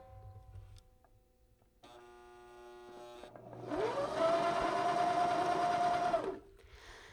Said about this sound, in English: And I think what was important, and I'm going to lean the microphone toward this machine, and I hope that you all can hear it on Facebook. Do you hear this hesitation as the machine begins to start sewing?